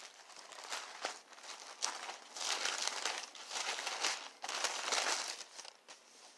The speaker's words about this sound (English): Listen to the pages turn as we turn to another verse. 1 Thessalonians 4 and 16.